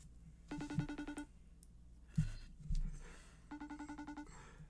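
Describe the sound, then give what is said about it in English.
A FaceTime call ringtone plays as a friend is called and does not answer: two short bursts of quick, bright, pulsing chimes separated by a pause of about two seconds, fairly soft, with a couple of breathy noises in between. “I'm FaceTiming him.”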